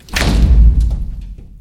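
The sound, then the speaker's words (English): A single heavy door slams shut with a deep, booming thud and a brief rattling decay, loud and alone with no talking. “The door just slammed shut.”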